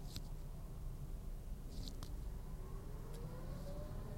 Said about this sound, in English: Truck just drove by. Mega Express Trucking. Man. Mega Express Trucking.